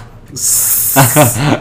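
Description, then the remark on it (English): A person hisses like a snake, a loud, steady, breathy hiss held for over a second, with some voiced sounds joining in toward the end. “A snake.”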